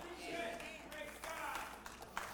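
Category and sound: crowd, three hand claps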